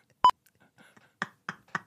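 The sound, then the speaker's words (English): A single short, sharp electronic beep of a smoke detector rings out once, followed after a pause by a few brief, muffled bursts of sound. “It's smoke detector beeping.”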